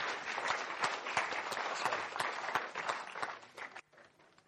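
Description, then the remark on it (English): An audience applauds two musicians who played over Christmas time, with dense, steady clapping made of many overlapping sharp hand claps, holding at a fairly loud level before it drops off abruptly to a faint patter near the end. “Why don't you give them a clap, because they've served us really well over Christmas time.”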